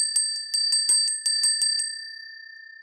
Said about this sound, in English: This is my favourite part of the podcast when I ring my feng shui bell.